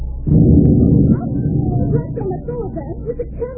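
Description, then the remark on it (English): A loaded cannon, its fuse lit, fires a single loud blast that booms out suddenly, its deep rumble lasting about a second before fading into lingering noise as voices murmur afterward. “Now I will light the fuse to the cannon.”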